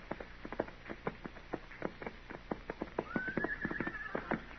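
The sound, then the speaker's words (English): Saddled horses wander at an uneven pace down the street, hooves clip-clopping steadily on hard ground, with a drawn-out whinny rising near the end. No one speaks. “what do you figure them horses are doing down there? It ain't right they should wander around like that without it.”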